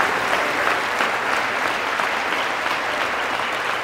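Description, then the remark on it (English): An audience applauds during a speech by the president, a dense, loud wash of many hands clapping that holds at an even level for several seconds without pause. “Hold your applause until the economy is fixed.”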